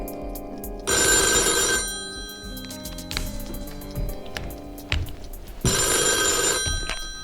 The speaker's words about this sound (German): Kaum war sie allein, da klingelte das Telefon.